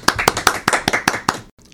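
A brief round of applause: about eight sharp, evenly spaced claps at a quick, steady rhythm, fairly loud, then an abrupt stop into near silence. No voices are heard.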